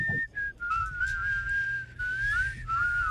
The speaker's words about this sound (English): Can you play it again? There's whistling in it that comes in after.